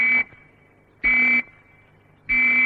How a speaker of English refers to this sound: Or you may hear three whistles, like this.